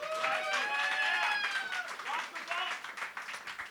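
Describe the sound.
An audience applauds in a sustained burst of clapping, answering a call to show by applause how many have already voted, with whoops and voices rising over it, then the noise thins and tapers toward the end.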